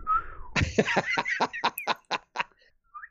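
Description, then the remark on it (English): A pet bird whistles to a female bird outside: a brief rising whistle, then a quick run of about eight sharp, raspy chirps in steady rhythm, ending with one soft chirp. No talking. “He's whistling to a female bird outside.”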